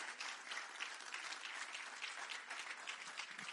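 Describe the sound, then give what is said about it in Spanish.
An audience breaks into sustained applause for the Lord one morning, a dense steady wash of many hands clapping together at even loudness, with no one speaking over it. “¿Por qué no damos un aplauso al Señor en esta mañana?”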